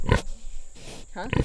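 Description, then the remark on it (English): A 400-pound mulefoot pig named Connie grunts while being offered a cookie, with two short, rough snorting bursts at the start and near the end and a quieter, breathy stretch between them. “They keep poultry, grow a ton of different vegetables, are planning to start a mushroom and ramp patch, and are raising a 400-pound mulefoot pig named Connie.”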